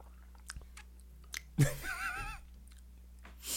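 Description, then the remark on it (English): Quiet sipping as people take their first sips of drinks: a few soft mouth clicks, then a louder wet slurp blending into a brief voiced murmur, and one more faint sip at the end. “All right, before we get into discussion, let's just do first sips.”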